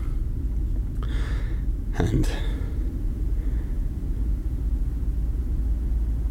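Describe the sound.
A constant low mechanical hum from spacecraft life support drones steadily the whole time, joined briefly by a single spoken word and a couple of short breathy bursts.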